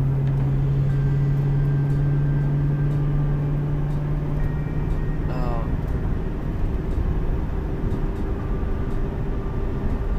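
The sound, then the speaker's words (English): A 1999 Mustang, 35th anniversary edition from the first year of the New Edge body, with 4.10 gearing, driving, heard from inside the cabin: a steady, loud low rumble of engine and road noise with a humming engine drone that fades out partway through. “And this is the first year of the new Edge Mustang.”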